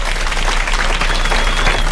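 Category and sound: crowd, round of applause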